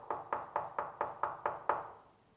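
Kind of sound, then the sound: impact, knocking on a door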